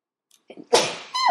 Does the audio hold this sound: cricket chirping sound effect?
no